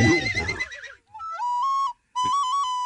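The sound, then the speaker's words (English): A loud, quavering horse whinny opens, then gives way to two steady, flute-like whistled notes with a brief gap between them. No one speaks. “That's a horse.”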